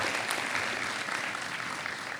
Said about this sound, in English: Can everybody give a round of applause for these people? Thank you.